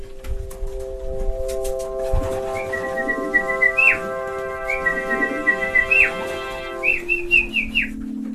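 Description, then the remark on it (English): Human whistling calls meant to keep trained pigeons airborne ring out in a repeated pattern of rising, sliding notes, three clear phrases over a steady tonal hum and faint background activity, with no talking. “shouting and whistling to keep them airborne, because that's their training.”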